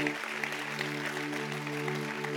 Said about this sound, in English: About 50% of you felt like that was a good enough zinger to clap at. That's good. That's good. The numbers are slowly rising here today.